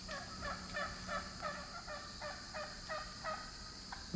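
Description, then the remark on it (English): Wild turkeys crossing a low brook after a few weeks of dry weather gobble in a rapid, repeated series of rattling, bubbly calls, about eight bursts in quick succession at moderate loudness, with no voices present. “That's just a great sound, isn't it? When it gets closer to Thanksgiving, I always am commenting.”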